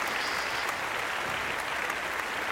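A short burst of steady, dense applause, many hands clapping at once in a continuous crackling wash with no voices over it.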